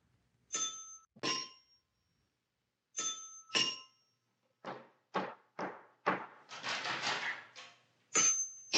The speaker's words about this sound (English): And your tension mounts until finally you hear the doorbell.